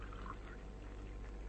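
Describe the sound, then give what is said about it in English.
Water pours steadily from a water bottle for someone to drink, a soft gurgling stream with a brief rising glug near the start, fairly quiet with no talking. “Biggles left his water bottle by the bunk for you.”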